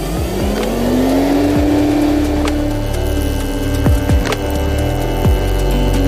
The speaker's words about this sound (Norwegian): Dette er fresnokka, og her fres vi ut profiler og litt. Andre sånne ting.